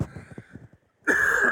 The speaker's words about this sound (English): I've got a cough, so just excuse me a minute.